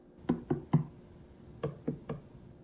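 Two quick sets of three knocks on the big pod of the plant Audrey Jr., separated by a short pause. The raps are fairly firm and slightly hollow, with no voices.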